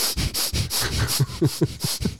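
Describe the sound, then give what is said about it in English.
Rapid breathing through the nose, done as the first stage of dynamic meditation: about eight quick, hissing in-and-out breaths in a fast, steady rhythm, fairly loud and breathy, with no talking. “First, the person does 10 minutes of rapid breathing through their nose.”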